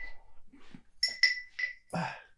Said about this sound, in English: And this is why I'm going to ring the bell, because I want this.